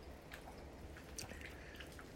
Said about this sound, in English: the sound of the rain today. Beautiful. It sounds beautiful hitting on the little wooden doorstep.